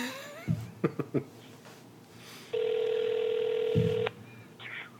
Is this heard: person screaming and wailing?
no